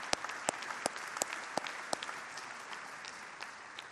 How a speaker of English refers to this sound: We can clap for that. That's awesome.